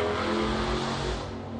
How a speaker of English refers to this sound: Wow. That was, somebody just, what do they call it, peeled out or whatever, revved up the engine.